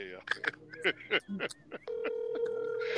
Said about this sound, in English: It's ringing. You call me? It's ringing.